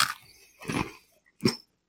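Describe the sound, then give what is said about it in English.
Someone crunches into a crunchy oatmeal cookie with peanut butter on it, giving three dry, brittle bursts of chewing with short quiet gaps between them and no talking. “now that I know that this is oatmeal cookie, I'm going to try the top cookie itself without any peanut butter”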